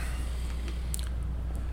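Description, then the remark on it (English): Soft, irregular chewing: a few faint wet clicks and crunchy ticks spread over a couple of seconds, with a low steady hum underneath and no talking. “You guys talk amongst yourselves while I'm chewing.”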